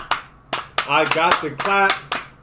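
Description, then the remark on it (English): A handful of sharp, loud claps ring out at uneven intervals as several people clap together on a count of three, while voices talk and call out over and between them. “can we all agree that this is the best Spider-Man movie? It's the best. Agreed. Clap on three.”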